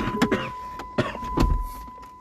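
A car's electric window motor whines steadily as the glass closes, an even hum with a few soft knocks and rustles over it, lasting about two seconds.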